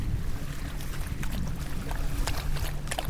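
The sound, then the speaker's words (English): A steady, low engine drone from motorboats, pontoon boats and jet skis out on a river on a warm summer day, continuous, with wind noise and faint water sounds over it. No one speaks. “I can see three people in a canoe, people in motorboats, pontoon boats, jet skis, lots of people out on the river today.”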